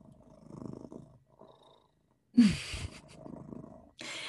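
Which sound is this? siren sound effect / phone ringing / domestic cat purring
domestic cat purring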